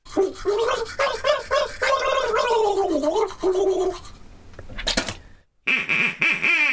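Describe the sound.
A person loudly imitates a duck, letting out a rapid string of nasal, buzzy quacks, followed by a brief pause and another burst of raspy quacking sounds.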